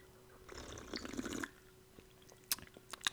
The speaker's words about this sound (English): I didn't even sip on my drink this whole time. I'll take another sip quick.